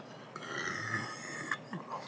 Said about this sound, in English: I have another burp coming up.